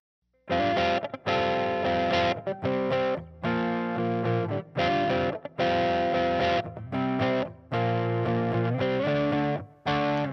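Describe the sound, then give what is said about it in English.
An electric guitar plays loud chords through an amp and an Electro-Harmonix Holy Grail reverb pedal, the reverb set low in the mix, with a slightly gritty tone and a light touch of spring reverb, strummed in rhythmic bursts separated by brief pauses, with no voices. “So let's go ahead and give a listen to what our guitar, our amp, and our holy grail sound like together.”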